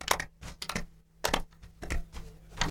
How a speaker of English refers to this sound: Then stomp your feet and clap, making a lot of noise.